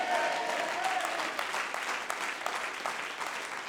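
A church audience claps their hands in a dense, steady burst that continues throughout, fairly loud, with a faint raised voice or shout audible near the start, as the preacher calls on them to clap and shout amen.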